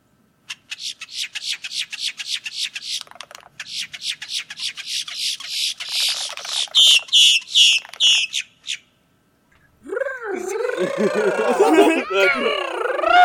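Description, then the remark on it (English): A person imitates the male boat-tailed grackle's courtship vocalization: a rapid run of dry, high clicks building into harsh rasping bursts, then, after a short pause, loud squeaky, wavering whistles. “So their courtship display, the male will point his bill down, okay, vibrate his wings, spread his tail feathers, and then make this distinctive vocalization.”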